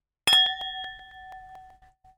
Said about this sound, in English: And also sound editing is hard, so we're just gonna not do that, and instead we're gonna cheers for the ringing sound. Hey.